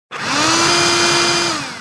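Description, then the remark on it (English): A robotic vacuum cleaner whirs steadily with a loud, constant motor hum, a low drone and a bright airy hiss above it, holding even for under two seconds with no voices. “A vacuum cleaner! Not just any vacuum cleaner, a robotic vacuum cleaner.”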